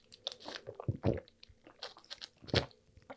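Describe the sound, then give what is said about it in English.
Someone gulps down Minute Maid pink lemonade, with several wet swallowing bursts and small mouth clicks spaced unevenly over a few seconds, and no talking. “Oh, that was a lot of gulps.”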